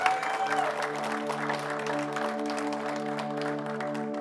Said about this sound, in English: Can we get a round of applause to the band in particular?